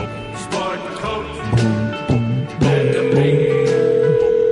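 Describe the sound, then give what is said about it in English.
A phone line connecting as a radio show calls a guest: a few short dialing beeps followed by a steady, sustained ringing tone, with a dense hum of background sound underneath and no one talking. “Right now, let's try to get Manson on the phone.”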